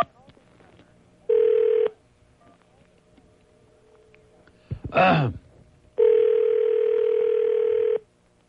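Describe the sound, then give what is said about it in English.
A short electronic phone tone, then the ringback of an outgoing call to the last number that called the line: steady, buzzy ring tones, one brief and one lasting about two seconds, clear over a quiet line. “To call this number, enter 1.”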